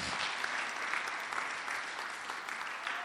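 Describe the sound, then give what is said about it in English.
Steady, dense applause from an audience clapping for Jesus fills the whole three seconds, a continuous wash of many hands clapping at an even level with no pauses and no voices. “Yeah, Clap for Jesus. Clap for Jesus.”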